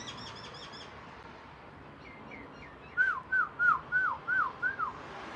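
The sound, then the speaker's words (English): A bird chirps outdoors in a quick run of six short, bright, rising-and-falling notes, clear. Fainter, higher twittering comes before it over a steady background hiss. “Oh, you hear the birds?”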